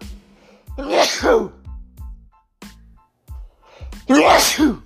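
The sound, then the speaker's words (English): Two loud sneezes about three seconds apart, each a sharp explosive burst, with a few faint clicks and thumps in the quiet gap between them. “Sorry, I'm about to sneeze.”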